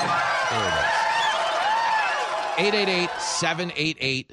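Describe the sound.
A crowd-cheering sound effect played on a radio show: a loud crowd roars and cheers wildly, with shrill whistles rising and falling over the din, then a few short shouted voices break through as the noise cuts in and out.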